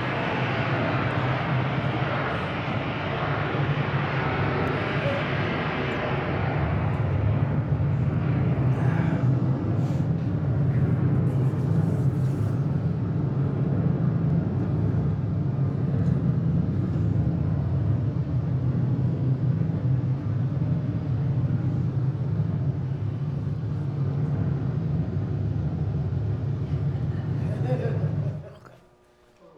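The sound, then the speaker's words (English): A large explosion's rumble: a loud, sustained roar that starts harsh and broad, then settles into a heavy, deep rumbling for nearly half a minute before abruptly falling away. “And I was telling you last week that when you take the term explosion, it can mean a lot of things.”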